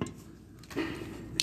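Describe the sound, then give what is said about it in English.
A can of caffeinated drink being cracked open: soft handling noise, a rush of fizzing hiss, then a sharp, bright pop of the tab near the end. No one speaks. “Let's crack this caffeine over, because I'm thirsting to damn death.”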